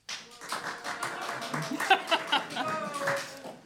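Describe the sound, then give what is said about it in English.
An audience applauds to vote for the Soylent Green Party team in a debate, a dense, steady patter of many hands clapping for a few seconds, with a few high whoops and cheers rising over it midway. “Applaud now.”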